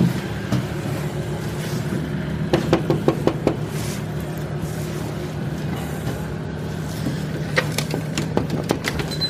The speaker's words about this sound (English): It's 2 a.m. at this point, so I have no idea what their reaction will be. I knock on the door. No one replies.